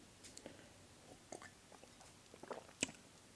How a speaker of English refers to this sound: I'm a little lit, so I'm just kind of talking. Let me take a sip of this wine.